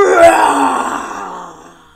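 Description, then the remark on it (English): A person imitates a tiger with one long, loud, rumbling roar that starts strong and slowly fades over about two seconds, voiced and growly with no words. “But they do nice big roars, so can you do a big roar for me?”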